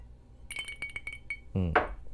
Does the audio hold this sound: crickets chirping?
no